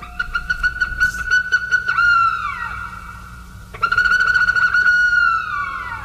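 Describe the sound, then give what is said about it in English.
A Bufflehead, a diminutive duck with a large head, gives two drawn-out bouts of squeaky, reedy whistling calls, fairly loud, each ending in a downward slur, over a low background rumble. “Yes, it's the Bufflehead.”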